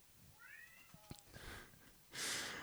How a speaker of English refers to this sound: I hope your cat Spaghetti is showing up in the background because that's a wonderful treat for listeners.